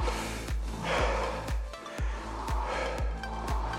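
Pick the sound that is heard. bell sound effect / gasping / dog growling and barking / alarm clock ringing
gasping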